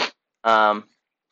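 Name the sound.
sneeze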